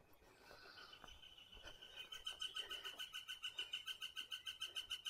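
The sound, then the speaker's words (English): A woodpecker, right overhead in the morning, gives a long run of quick, evenly spaced high-pitched notes, growing louder and steady over a few seconds, with faint earlier chirps and no one speaking. “So, do you hear that? We're That's looking for woodpecker, that woodpecker.”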